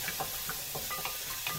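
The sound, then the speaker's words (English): Bacon and vegetables sizzle in a hot pan with a pinch of butter, a steady crackling hiss broken by a few soft scrapes and knocks as they are stirred, cooking so the vegetables caramelize. “So you can hear the sizzling, right? I want to get that vegetables to caramelize a little bit.”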